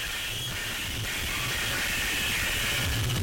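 Harsh noise music plays: a dense, abrasive wall of hissing static with rumbling low-end bursts, loud and continuous throughout, with no voices over it.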